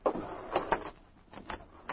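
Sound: front door being opened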